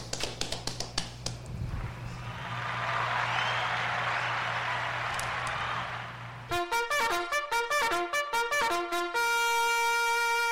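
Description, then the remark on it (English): A few sharp claps open into a steady wash of audience clapping at the end of the Bunk 1 Shenanigans segment, lasting several seconds, which cuts off as a bright, plucky musical jingle of rhythmic repeated notes takes over. “Clap it up.”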